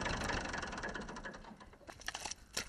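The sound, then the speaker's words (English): The engine of an old, classic red Massey Ferguson 35 tractor on a farm in County Kildare runs with a rapid, rattling chug, then sputters and winds down into uneven clanks and knocks as it is turned off. “I'll just turn off the tractor.”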